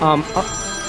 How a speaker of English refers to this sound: The phone is ringing. Should I go pick it up?